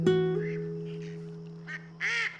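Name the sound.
mallard duck calls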